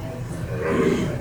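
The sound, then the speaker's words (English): A single loud sneeze bursts out, a short explosive blast of breath that swells and fades within about a second, with a low rumble of room noise underneath. “Bless you.”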